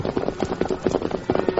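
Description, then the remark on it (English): Rapid, rhythmic hoofbeats pound in quick clusters as a herd of cattle stampedes and a girl's galloping horse rides in the path of the running cattle, loud with a rumbling, dense texture. “Girl riding in path of running cattle.”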